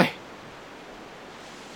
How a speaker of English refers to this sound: It's all static. Let me just adjust the channel.